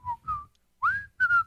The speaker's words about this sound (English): That's not an easy song to whistle, either.